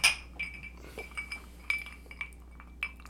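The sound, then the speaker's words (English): Several bright glass clinks ring out in quick succession, whiskey glasses tapping together in a toast, each with a short ringing tone over a quiet background. “Cheers, boys. Here we go. Cheers.”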